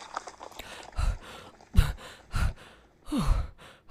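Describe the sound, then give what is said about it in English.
A man who has run all the way back from a battle gasps and pants heavily, drawing four or five ragged, breathy breaths in an uneven rhythm, one with a strained voiced catch, with no talking. “The man was short of breath. He was gasping for air.”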